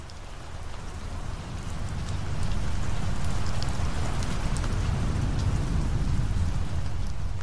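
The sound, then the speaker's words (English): Steady, heavy rain from a major storm front pours down with crackling drops and a deep low rumble beneath, swelling louder after the first couple of seconds and holding strong to the end, on the US East Coast on the evening of Monday, September 10th, 2001. No voices. “A major storm front swept across the East Coast on the evening of Monday, September 10th, 2001.”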